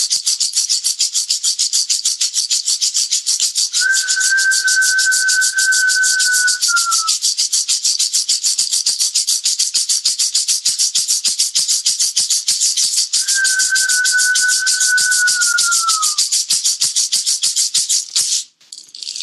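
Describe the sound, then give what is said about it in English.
A shamanic rattle shaken in a fast, steady, hissing rhythm for about eighteen seconds, joined twice by a long, sustained whistled note that dips slightly in pitch as it ends. “So I'll just begin by doing some rattling and some whistling.”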